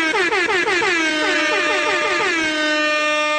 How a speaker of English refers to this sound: I don't know how to tell you this. We've already got, at 2:05, quadruple air horn action.